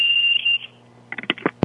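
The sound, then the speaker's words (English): A shrill, steady electronic alarm tone rings for about half a second and fades, signalling that it is time to make a call, followed by a short burst of sharp clattering knocks and a final thump. “The alarm's gone off for you to make your call.”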